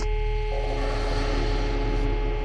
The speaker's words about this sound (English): The call light flicks out. Just an empty dial tone.